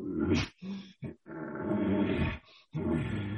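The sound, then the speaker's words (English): A voice imitates a bull elk's growly pants in an elk-calling breeding sequence with raking of brush: a string of rough, raspy grunting bursts, one drawn out longer than the others, loud and harsh with brief breaths between them. “And just kind of give a couple little, you know, a little growly pants or even and you know, he's just feeling it, you know, and because he's with all these cows, and I'll go ahead and go back to the raking.”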